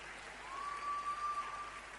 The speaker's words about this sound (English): Thank you all for clapping for the word of God. Thank you for clapping.